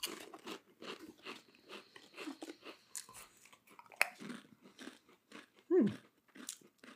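Someone crunches and chews four cheese Pringles potato crisps: a steady run of crisp, crackly bites in an irregular rhythm, with one brief descending squeaky tone near the end and no talking.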